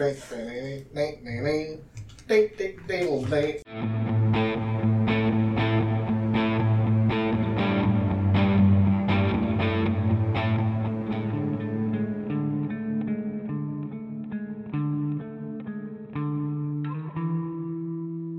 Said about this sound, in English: But yeah, with that, cue the theme music.